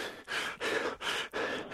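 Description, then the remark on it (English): Heavy breathing blasts straight into a phone mic, four loud, airy huffs in a steady rhythm with brief pauses between them. No talking. “When you hear them breathing on the phone, you mistake it maybe.”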